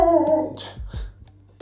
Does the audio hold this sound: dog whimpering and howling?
yes